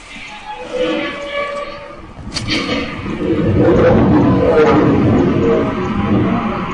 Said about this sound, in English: This man has this lion in this cage, and he's going to open the cage to have a chat to his lion. Let's see the response.